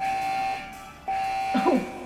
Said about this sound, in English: Many of you have taken domestic maglev trains, and you will find this one very similar. In the event of an emergency, the cabin alarm will sound.